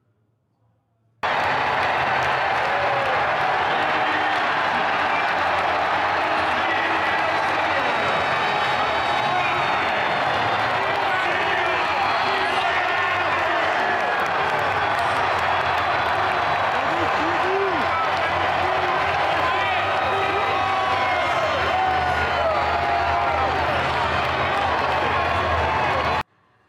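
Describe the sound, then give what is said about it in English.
A huge arena crowd of Colorado Buffs fans in Boulder, Colorado, roars, cheers and applauds an entrance without pause for about twenty-five seconds, a loud, dense wall of clapping and shouting voices that starts abruptly and holds steady. “Let's play the entrance, is just incredible.”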